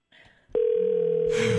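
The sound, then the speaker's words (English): A steady electronic telephone ringing tone, from a call to the number on a billboard, starts after a brief soft rustle and holds loud, with a lower tone joining near the end as a burst of hiss rises. “Maybe he'll pick up the phone and explain himself.”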